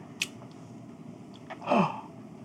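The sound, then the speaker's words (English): A short, sharp intake of breath, a quick breathy gasp that rises out of low background noise and trails off. A fainter breathy click comes just before it, and no one speaks. “Don't gasp. That's not a revelation.”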